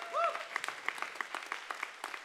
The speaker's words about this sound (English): Come on, let's clap our hands and say a good amen.